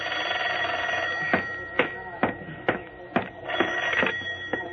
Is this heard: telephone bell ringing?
yes